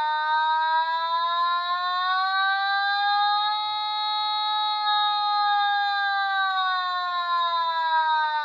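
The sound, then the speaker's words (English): A synthesized first-responder siren made by an automaton holds a steady, buzzy electronic tone with stacked harmonics, slowly rising and falling in pitch over several seconds, loud and continuous with no voices. “A first responder.”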